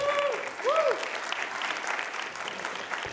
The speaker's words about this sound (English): That's it. Another round of applause at least.